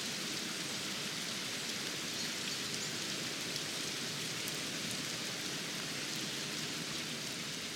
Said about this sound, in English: Let's sit and listen to the sound of rain for just a moment. That's a car driving by. It can be relaxing to listen to the rain. If you listen carefully, you can hear some birds as well.